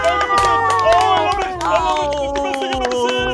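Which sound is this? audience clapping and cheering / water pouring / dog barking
audience clapping and cheering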